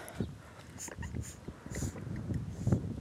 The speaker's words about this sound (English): Take a sip of water. I want you guys to stay hydrated while listening to my podcast. So drink water, bitch.